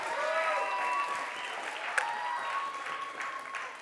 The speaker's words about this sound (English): And so let's just put a big clap together